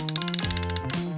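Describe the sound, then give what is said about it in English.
A ratchet wrench clicks rapidly in a quick, even series of sharp ticks, fairly loud, with a sustained tonal hum running beneath it. “Wrench.”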